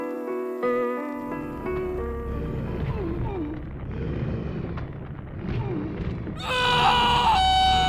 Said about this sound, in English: What the fuck was that? What the fuck was what? Did neither of you hear that? It sounded like a scream. A scream? There are plenty of screams in the game, I heard that. I'm telling you, it sounded like it came from back there.